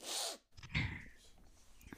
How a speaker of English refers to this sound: Hold on, I got a sniffle. I don't, my nose is really running right now.